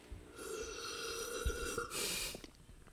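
A long, airy slurping sip of tea drawn in for about two seconds with a faint whistling tone, ending in a louder hissy rush of breath, apparently a voice imitating the sound.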